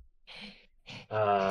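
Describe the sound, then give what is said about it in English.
Loud heavy breathing: two rough, airy breaths in quick succession, then a longer voiced exhale like a strained sigh or moan, with no talking. “AKA heavy breathing.”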